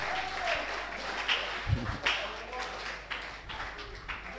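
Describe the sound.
An audience claps steadily, a dense wash of many hands that holds for several seconds with a few louder bursts, voices faintly mixed underneath.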